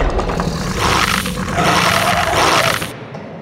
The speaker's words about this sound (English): Dogs! There's a dog outside my door. I thought we were underground, but who knows anymore because there's a fucking dog outside my door.